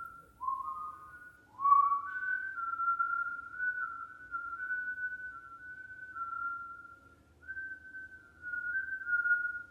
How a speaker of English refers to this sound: Whistling sliced through the silence. It was coming from the next room.